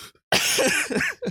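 A short burst of raspy coughing, fairly loud, with a few quick hacking bursts in a row and a brief breath before it.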